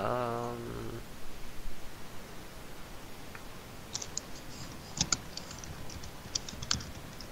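Soft, irregular keyboard typing, with clusters of light clicks and a few sharper keystrokes in the latter half, following a short tonal sound at the very start. Fairly quiet.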